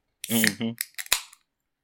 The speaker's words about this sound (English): A little bit of sparkling water ASMR.